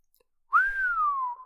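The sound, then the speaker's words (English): A man whistles a single long, low whistle, starting with a quick rise, then gliding slowly downward in pitch for about a second, clear, with no talking. “Then he whistled long and low.”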